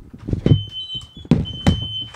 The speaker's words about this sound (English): Is your house on fire? It could be. So it's a garbage truck, I think. Oh. No, it's coming from that way.